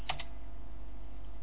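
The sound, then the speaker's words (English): Two quick, close-together clicks of keys being pressed on a computer keyboard as a person types in a netstat command, crisp, followed by a steady low background hum with no more typing. “I'm trying to do it. I'm typing it in.”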